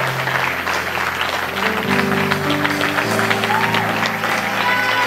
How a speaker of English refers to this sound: I'm going to come down here and just clap your hands as they get out of their seat. We're encouraging you.